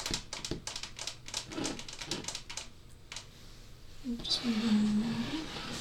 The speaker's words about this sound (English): I'm also going to get up and do some, just tap around the room as well to see how. So I'm just tapping over here on my computer monitor.